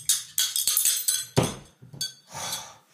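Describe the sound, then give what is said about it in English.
A cup is knocked over: a run of sharp ceramic clinks and clatters, a heavier crash in the middle, then a short rattling scrape as it settles. No voices. “You're going to knock that cup.”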